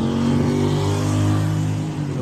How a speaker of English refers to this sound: My bus is here now.